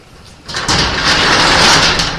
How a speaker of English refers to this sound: My brother's slow on the door close.